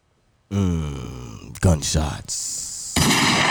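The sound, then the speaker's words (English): Gunshot sound effects: a drawn-out vocal tone gives way to a couple of sharp, loud bursts close together, then a rougher, sustained blast at the end. “Gunshots.”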